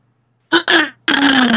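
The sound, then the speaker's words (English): A series of three loud, voiced gasps, each with a breathy edge and slightly falling pitch: a short one, a slightly longer one, then a drawn-out final gasp, with no speech around them. “Oh, wow, that was an interesting sound. Isn't it interesting that a gasp, a simple gasp, can be either terror or joy and excitement?”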